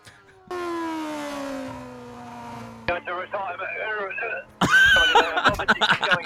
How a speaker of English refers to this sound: I've got vomiting going on.